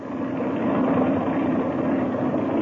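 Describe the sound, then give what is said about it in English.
A steady, droning airplane engine idles while warming up on the ground with the throttle cracked open a little, a continuous low rumble with a constant hum that neither rises nor fades. “while the engine's warming up, I want to give you some instructions.”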